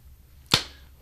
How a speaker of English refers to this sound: Our sound people, they have to synchronize these two recorders, and the way they do it is we have to clap into the mic.